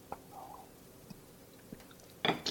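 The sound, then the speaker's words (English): A quiet sip of gourmet coffee made from home-ground beans: a few soft mouth clicks and small ticks, then a brief airy slurp near the end. No one speaks. “Take a sip.”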